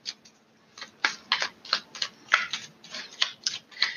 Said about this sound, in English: So, getting on with the reading, I'm shuffling the tarot mucha. I cannot guarantee that you will hear me shuffling the whole duration of this reading, but based off of faith, we will go from here.